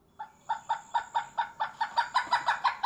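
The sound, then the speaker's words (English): A pileated woodpecker's short call: a loud run of about a dozen ringing, evenly spaced notes that quicken slightly toward the end, heard alone with no talking. “Okay, and the short call.”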